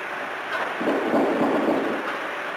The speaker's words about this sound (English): At about 4:15 in the morning, we recorded the sound of the door being opened again. Although this was similar to the previous one, it lacked the squeak of the bolt.